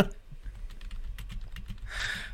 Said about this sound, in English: is busy typing away. Subtle. Okay. Subtle typing.